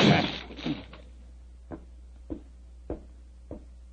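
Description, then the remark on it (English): A heavy wooden locked door is shouldered open with a loud splintering crash, followed by four dull, evenly spaced thuds, with no voices. “Open the door. Well, it's locked. Never mind that. Get your shoulders into it.”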